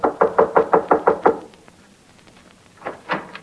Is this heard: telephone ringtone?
no